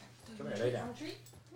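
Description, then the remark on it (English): A dog in a room whimpers in a single drawn-out whine that rises and wavers for about a second, with a low murmur of room noise underneath. “She don't want no dogs in the room, boy.”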